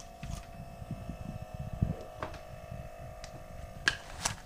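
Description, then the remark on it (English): A small air pump as someone puts air in a tire, a steady mechanical whine over a fast, rhythmic low chugging, fairly quiet, with a few brief clicks and no talking. “Somebody's probably putting air in their tire.”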